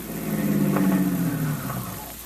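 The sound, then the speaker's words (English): A car engine hums, its low droning pitch sliding gradually downward as the vehicle slows, the sound easing off toward the end as it pulls to a stop. “Stop the car, Vitamin.”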